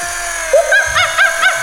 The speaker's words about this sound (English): Let's remove a sample from his stomach and see what he had for his last meal. Very well. Yes, doctors. 10:26 a.m., the first incision. This drill is lowering onto the mummy's stomach. We have contact. Contact. Contact.